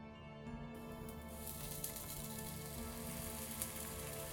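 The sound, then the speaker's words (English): Thick white batter sizzles on a cast iron pan, a steady bright hiss with dense fine crackling throughout and a couple of slightly sharper pops, fairly soft, with no voices. “A few minutes later, I had thick white batter sizzling on a cast iron pan, but I could barely focus on what was in front of me.”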